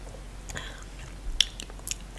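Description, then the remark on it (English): Someone quietly sips a buttery, low-acidity, off-dry wine during a wine tasting: a few soft, wet slurps and small mouth clicks, with a brief slurp near the middle. No one speaks. “Are we going to sip it?”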